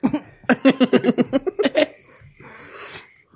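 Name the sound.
cough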